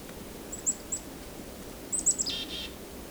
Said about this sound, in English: So I've got one within a couple feet of me here. It's very curious. So let's bring the chickadees over, and sometimes you'll bring over whomever's flocking with them. In this case, I think it's all chickadees.